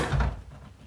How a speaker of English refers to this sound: Important sounds that guinea pigs like to hear. Number one, the sound of the refrigerator door opening.